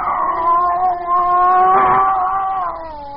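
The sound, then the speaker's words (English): A scrawny cat yowls in one long, drawn-out wail that wavers slightly in pitch for about three seconds, loud, with no talking. “There was a cat. That scrawny cat, Clara, that Mother Willis had sneaked aboard in La Guaira.”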